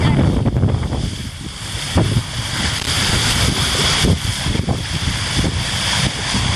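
A strong wind of about 25 knots roars steadily across a microphone aboard a fast-moving racing sailboat. The boat is hurling down a harbour with its big chute up. Heavy low rumbling buffets and rushing water noise fill the whole stretch, loud.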